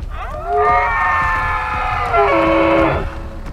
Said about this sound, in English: Cord turns his head up and howls to the darkening sky.